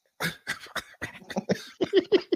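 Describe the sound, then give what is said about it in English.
A rapid string of about ten harsh coughing bursts from someone laughing hard, the later ones turning voiced and laugh-like, with no talking in between. “You got me coughing now, laughing so hard.”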